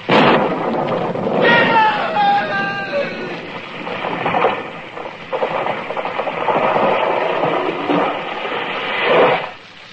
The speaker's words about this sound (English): It was lightning. It struck the tree.